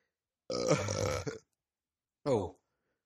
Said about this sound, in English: It makes you burp like a champ.